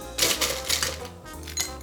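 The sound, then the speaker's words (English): Ice cubes clatter and clink into a glass, filling it all the way to the top for a non-alcoholic drink, in two bright, rattling pours separated by a short pause, a busy run of hard little knocks with no talking. “So you're just going to take your glass, fill it with ice all the way up to the top.”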